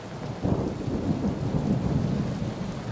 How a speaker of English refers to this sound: The lighthouse beacon shines on the waters, also on the inland trees bending under the gale. Now it is raining sideways.